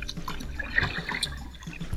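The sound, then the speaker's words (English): Gentle river water lapping and trickling, with small scattered drips and splashes over a soft, continuous liquid wash; no voices. “Well, I'm out on the river.”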